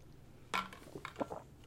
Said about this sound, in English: So before we dive right in, I'm going to take a big swig of water.